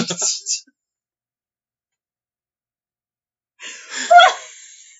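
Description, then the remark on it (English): Heavy, breathy exhales puff right into the microphone: a short burst, a few seconds of silence, then a longer, louder rush of breath that trails off. “You're just like deep breathing into the microphone.”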